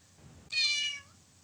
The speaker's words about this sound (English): Sorry, I just heard the cat meowing. Yeah, in the cat's just jumped.